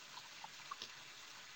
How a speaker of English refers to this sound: Actually, to be honest, I was washing some dishes so I can make dinner after this.